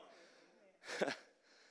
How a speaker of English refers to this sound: All the wind sucked out of the room because everybody gasped.